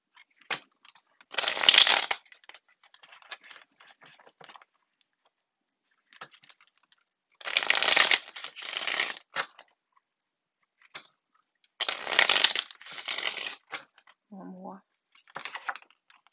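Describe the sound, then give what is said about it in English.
Tarot cards are shuffled for a weekly reading for the sign Leo in three or four brisk riffling bursts, crisp, with quiet pauses between them and a brief low murmur near the end. “Shuffle these cards.”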